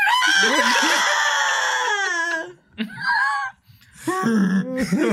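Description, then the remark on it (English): Someone imitates a dinosaur scream meant to say 'military helicopter' in dinosaur: a long, loud, high-pitched wavering screech, then two shorter rasping shrieks after brief pauses, with no other talking. “I want to let out a big scream that means military helicopter in dinosaur.”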